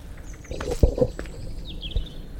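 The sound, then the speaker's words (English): Someone scrambles clumsily and unsuccessfully over a fence outdoors: a couple of heavy thumps and rattles in quick succession, with faint birds chirping in the background. “That was me not negotiating a fence successfully.”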